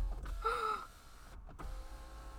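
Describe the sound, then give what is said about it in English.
An electric car window motor whirs briefly as the glass slides down, a short rising hum inside a car with low engine rumble underneath and no talking. “We're, like, dying in of heat in the car, and we could just roll the windows down.”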